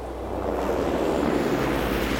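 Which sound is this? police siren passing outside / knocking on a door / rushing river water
rushing river water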